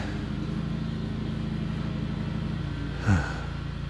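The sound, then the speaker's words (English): A lawnmower idles outside, its small engine holding a steady, low droning hum throughout, with a brief louder bump and falling sweep near the end. “Now, can you guys hear the lawnmower? It's just like, he's just like idling outside he's probably moving a rock.”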